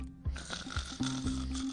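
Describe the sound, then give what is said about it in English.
A short, comic snoring sound effect: a couple of low, rattling snorts followed by a steady droning buzz, with no talking. “One of them even sleeps in his bed. I wonder if it snores.”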